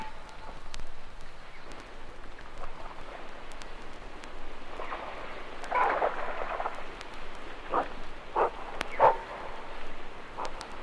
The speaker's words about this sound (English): One of the bushbuck runs through the water.